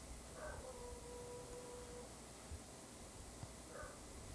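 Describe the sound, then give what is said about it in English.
A dog lets out a thin, drawn-out howl lasting a second or two, then gives a short whimpering cry near the end. Faint over a soft background hiss, with no talking. “Dogs are dragging it out too.”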